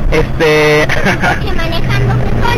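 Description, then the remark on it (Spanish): A steady vehicle rumble and road noise from inside a taxi moving through traffic in Mexico City, with a voice talking over it. “queremos explicarles en esta locación en vivo, mientras me encuentro en este taxi de la Ciudad de México, manejando, así que créanme, un fantasma manejando.”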